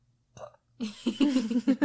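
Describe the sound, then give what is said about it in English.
A short throaty catch, then a loud, drawn-out burp lasting about a second, rough and pulsing as it rumbles out, with no talking. “That was a very Gatorade-y burp.”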